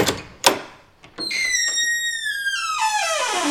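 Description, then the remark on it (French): A couple of sharp latch clicks, then a heavy wooden confessional door swings open with a long, drawn-out creak that slides downward in pitch, loud, with no voices; a sound effect on the radio station Maximum. “Tous les samedis soirs sur Maximum, ouvrez les portes du confessionnal.”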